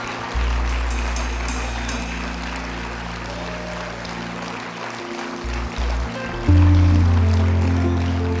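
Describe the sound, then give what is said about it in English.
An audience applauds and cheers on a man who has got up and walked, in a dense, continuous wash of clapping that holds steady for several seconds, with a low droning hum underneath and a louder surge near the end. “Come on, give him a big hand. Come on, cheer him on.”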